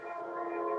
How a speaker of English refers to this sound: The train, by the way, the train is going by. Is that your place? Yeah, sorry. No, that's cool. I had to leave the window open.